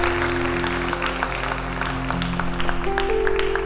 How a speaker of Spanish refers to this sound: A ti, si vamos a darle un aplauso al Señor, hay que dárselo fuerte, fuerte, fuerte.